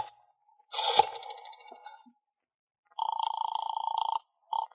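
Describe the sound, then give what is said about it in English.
A telephone receiver is lifted with a clattering rattle and a brief jingle of the bell, then the dial whirs in a steady buzzing sweep, followed by a short second turn, as someone dials to call the police. No one speaks. “I said hand me the phone.”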